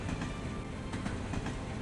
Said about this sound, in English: They've blown the bolts on a hatch and the whole thing's dropped onto a cargo carrier train below. Incredible! If they timed that just a moment wrong, they'd have been all crushed under the train.